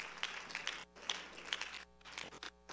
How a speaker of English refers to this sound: Let's give them a hand clap while folks are coming down. Here they come. All over the building. Here they come.